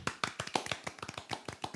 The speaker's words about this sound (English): And I mean that, the first episode. Round of applause.